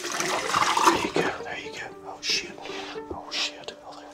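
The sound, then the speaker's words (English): Potassium cyanide is poured into a bucket in a short, rushing splash for about a second, then trails off while a soft whispering voice continues over a faint steady hum. “It's not only the fact that he is right now pouring potassium cyanide into a bucket in front of me that makes me wonder this.”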